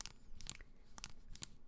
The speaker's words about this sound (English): They make a nice chattering sound whenever you press the keys.